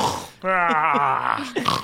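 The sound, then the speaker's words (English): A voice imitates a man snoring loudly while sleeping on a rocking chair in a corner: one long, throaty, rasping drone lasting about a second at a steady low pitch with a wavering buzz, then a short breathy catch. “And Balnor's just snoring so loudly in the corner on the chair, rocking.”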